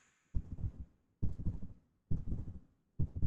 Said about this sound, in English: It was a sudden, deep silence in which Frodo could hear his heart beating.